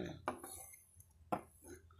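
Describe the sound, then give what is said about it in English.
Two separate glassy clinks about a second apart as glasses knock together while a shot is poured, fairly quiet against a soft hum. “Hey, that's how we start the show, baby. By taking a fucking shot.”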